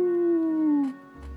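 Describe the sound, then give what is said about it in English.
A person imitates a dog's howl: one drawn-out, mournful tone that slides gently downward for just under a second, then breaks off. It is fairly loud, with no talking. “One howl for yes, two howls for no.”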